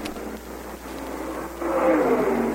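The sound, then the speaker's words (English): A stock car engine drones, its pitch rising and growing louder in the final second as Benny Parsons' car approaches, coming into pit road for a pit stop, with a steady roar underneath throughout. “Here comes Benny Parsons in for a pit stop.”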